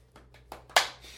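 A single sharp hand clap, given as a show-of-applause vote on a name, rings out loud and crisp after a few faint soft taps or rustles, then fades into a low background hum. No one speaks.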